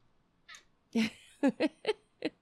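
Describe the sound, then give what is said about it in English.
A pet cat named Junior meows repeatedly into the camera with no one talking: a soft chirp, then a long drawn-out cry, followed by four short, sharp meows in quick succession. “He meows into the camera.”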